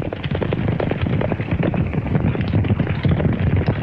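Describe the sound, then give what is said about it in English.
A dense, continuous rumble of many hooves pounding the ground as a herd of horses is driven into a corral, loud, with a steady rolling clatter and no voices. “Later, horses are herded into a corral.”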